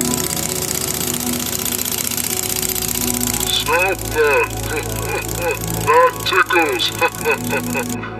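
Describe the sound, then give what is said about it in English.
A steady, loud mechanical drilling whir with a low rumble, from a drill digging out a rover, runs for a couple of seconds, then fades under warbling voice-like sounds that rise and fall. “Juno continued to drill.”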